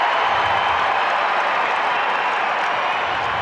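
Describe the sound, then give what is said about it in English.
A loud, sustained roar of a basketball arena crowd rising to its feet and cheering after Donovan's right-hand floater over Hayward, a dense wall of voices and applause holding steady for several seconds with no individual speech standing out. “The kid brings the crowd to its feet.”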